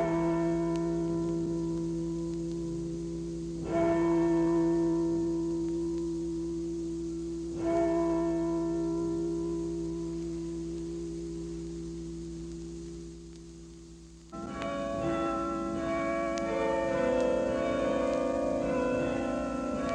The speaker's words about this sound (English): The famous bells of St. Clement's play oranges and lemons.